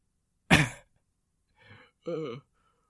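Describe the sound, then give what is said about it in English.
A voice imitates a cough: one harsh, loud burst, then a softer raspy sound and a short voiced grunt, with brief pauses between. “And you can see that they cough.”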